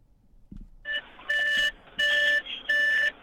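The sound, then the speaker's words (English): A car's Bluetooth connection chime as the car is switched on and the phone connects: three bright electronic beeps in a steady rhythm, clear, after a soft thump and a faint lead-in tone, with no talking. “My phone I just turned my car on and my Bluetooth kicked in.”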